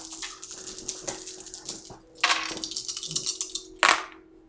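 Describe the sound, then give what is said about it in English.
Three dice rattle and clatter across a hard surface in a quick burst of sharp clicks, with a louder tumble midway and another short rattle near the end. “Oh, I got 2 10s. Ooh, nice. With my 3 dice.”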